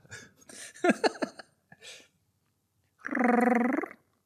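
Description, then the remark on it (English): A voice imitates a robot purr: a few squeaky, chirping vocal bursts, then a pause, then a steady, buzzing, mechanical hum with a faint pulsing flutter lasting about a second. “Robot purr.”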